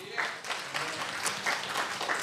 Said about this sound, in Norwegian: Gi dem en klapp!